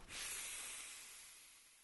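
Someone draws on a Juul e-cigarette: a steady, breathy hiss starts abruptly and runs for about two seconds, slowly tapering off, with no talking.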